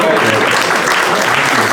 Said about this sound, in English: Yeah, I think that deserves a round of applause.